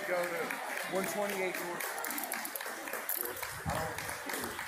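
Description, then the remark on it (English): A Pride Parade crowd claps in a steady, dense patter as a police officer handcuffs a Christian protester, mixed with loud chatter and voices talking over the applause throughout. “People at the Pride Parade are clapping because the cop is handcuffing this Christian protester.”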